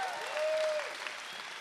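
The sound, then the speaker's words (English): A crowd claps steadily, a dense wash of many hands clapping at once, moderately loud and sustained throughout with no voices standing out. “Come on, that deserves a better round of applause this morning.”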